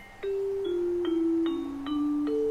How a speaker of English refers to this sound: Oh, that was the bell.